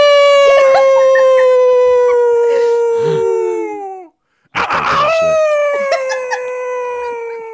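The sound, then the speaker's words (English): Two long, eerie howls from a voice imitating a wolf, each a sustained tone sliding slowly downward, loud, separated by a brief silent gap. “Here's a ghostly howl.”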